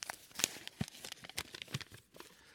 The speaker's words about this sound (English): And when you tell me to stop, I will empty those pieces of paper and open one up.